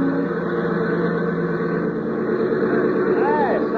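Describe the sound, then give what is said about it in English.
A small airplane engine drones loudly and steadily, a rough continuous roar with a brief rising-and-falling whine near the end, as the plane circles a little airport about a mile from a hotel with its fuel mixture thinned to sound in trouble, then lands and taxis to the hangar. “she'd be circling that little airport about a mile from the hotel and sounding as though she was in trouble”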